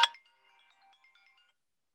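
signal or alarm, phone ringtone

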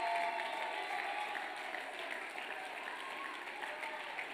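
crowd, audience clapping hands

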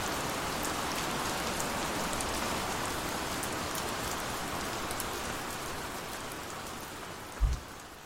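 nature, rain falling

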